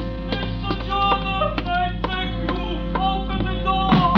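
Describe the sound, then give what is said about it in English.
Loud, heavy pounding on a cafe's glass-paned front door at 2 o'clock in the morning, about nine hard blows spaced evenly at a steady rhythm, with a sustained tonal hum running underneath the whole time. “like it when somebody comes slamming at my tambourine door at 2 o'clock in the morning. But that's what happened. And the slamming got wilder and wilder.”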